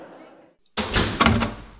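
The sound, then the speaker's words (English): After a faint murmur and a brief silence, heavy double doors slam shut behind Mr. Stringer with a loud thud, followed quickly by a second bang and a reverberant rumble. “He noticed with terror that the double doors had already closed behind Mr.”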